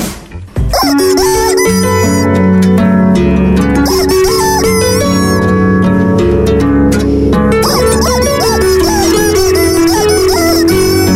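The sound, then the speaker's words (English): A rubber chicken, squeezed by a man with varying amounts of pressure to get different notes, squawks out a song melody, its loud, nasal squeals bending up and down from note to note over a steady backing track, continuous for about ten seconds. “Yeah, so he just squeezes it in with different amount, varying amounts of pressure to get different notes from a chicken.”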